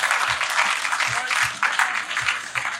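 Sustained applause from an audience, a dense steady patter of many hands clapping at even loudness for the whole stretch, with no one talking over it.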